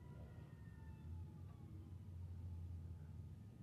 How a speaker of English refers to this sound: The sirens.